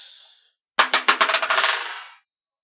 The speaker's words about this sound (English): Roll a 20-sided dice.